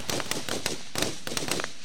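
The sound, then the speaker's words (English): A rapid volley of sharp gunshot-like cracks, about ten in under two seconds, firing in a steady, fast rhythm at moderate loudness with no voices; a battery of gunfire from three fighters meeting Bernie's charge in a dusty stadium arena. “They met at his charge with a battery of gunfire as Ahab and Fork both hid behind some of the cover that littered the stadium.”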